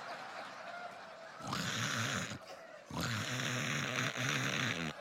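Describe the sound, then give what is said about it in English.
A voice imitates the heavy snoring of a sleeping pregnant woman: two long, loud, rasping breaths with a throaty rattle, separated by a brief pause and with no other sounds. “When she's pregnant, she sounds like a 90-year-old man who smoked cigarettes for all 90 years.”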